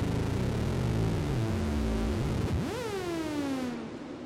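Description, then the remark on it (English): A Mother-32 analog synthesizer tone bends and swoops in pitch, its wobble speeding up as the LFO rate is increased, before a sharp rise and slow downward glide, washed in reverb over a hissy noise bed, with no voices. “this is basically just the sound of the Mother 32 on its own, with reverb, of course”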